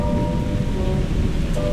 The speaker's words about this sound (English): And in all that wind and rain, a strange new perfume blows.